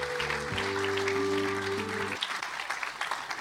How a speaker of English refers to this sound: A round of applause, please, everyone, for George Mendes, super agent.